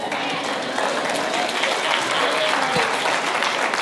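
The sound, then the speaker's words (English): Clapping from a small group in response to a preacher asking who wants to be blessed, a steady patter of hand claps that runs unbroken for the whole few seconds at an even loudness, with no one speaking over it. “All of a sudden, it's just a few claps.”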